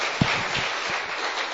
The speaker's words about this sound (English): Clap for him.